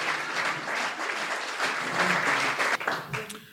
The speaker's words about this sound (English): And can we give a round of applause then?